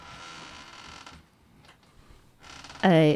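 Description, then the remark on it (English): Soft rustling and scraping noises give way to a sudden, loud, high-pitched door squeak at the very end, sharply tonal. “So if you hear a door squeaking, it is indeed exactly what you thought it was, which was our mini fans in for autographs.”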